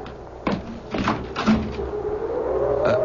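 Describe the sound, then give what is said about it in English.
A door is opened for a visitor on a cold night with a few wooden clunks and rattles, followed by a drawn-out creak over a steady rushing background. “What's that? Someone's at the door. Come in.”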